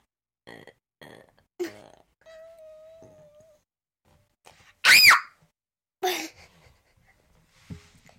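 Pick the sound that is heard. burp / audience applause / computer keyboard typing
burp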